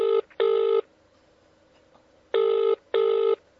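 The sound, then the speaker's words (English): An outgoing phone call rings unanswered: two double-burst ringback tones, each pair of short electronic buzzes separated by a pause of silence, clear with no voices. “He's not picking up.”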